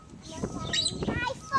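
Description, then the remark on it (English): A parrot chirps and gives squawky calls over about a second and a half, fairly loud, mixed with voice-like sounds in the background. “We're spending a lot of time with that bird for 4 minutes.”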